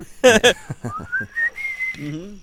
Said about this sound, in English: I know. I was wondering why I couldn't understand the whistling.